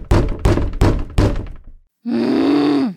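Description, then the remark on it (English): Four loud, heavy poundings on a trailer door in a steady rhythm, then a brief pause and a sustained low groaning voice. “you are awoken by a loud pounding on the trailer door.”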